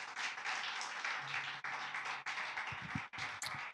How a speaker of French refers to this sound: Oh, put hands together again. Put hands together again. Applaudissons.